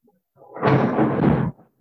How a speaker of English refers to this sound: Did you hear that? Do you hear that lightning? Wow.